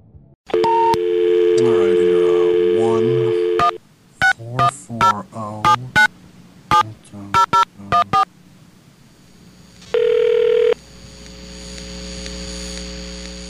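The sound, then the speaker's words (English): A steady dial tone, then a rapid series of touch-tone beeps as a number is dialed on a phone call made from the parking lot of the Silverdome, followed after a pause by a single ringback tone on the line. “I gotta make a phone call about something.”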